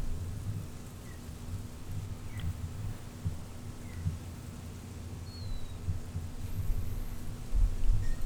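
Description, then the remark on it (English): An air conditioner runs steadily in San Diego, about 10 miles from the coastline, a constant low hum under a broad whooshing rush, with a few faint bird chirps. No one speaks. “With an occasional air conditioning.”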